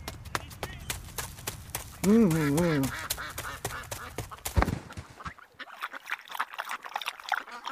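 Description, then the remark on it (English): Ducks on a pond are being fed bread. A duck gives a short run of wavering quacks over steady background noise, with irregular splashing and watery clicks before and after, then a quieter stretch of trickling water. “Throw the bread in for the ducks”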